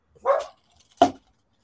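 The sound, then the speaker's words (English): A dog barks twice, two sharp, fairly loud barks about three-quarters of a second apart, with quiet in between and no one talking. “See, that dog knows that you don't make smart choices.”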